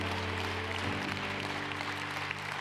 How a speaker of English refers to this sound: Come on, shout out amen and give God a hand clap of praise.